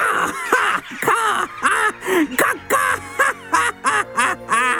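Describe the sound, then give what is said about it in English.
Crows caw in a rapid, raucous series of about a dozen harsh calls, loud, with short gaps between them and no talking. “The crows had a good time mocking Ozzy.”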